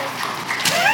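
A short stretch of audience applause: dense, overlapping clapping that stays at a steady, moderately loud level for about a second.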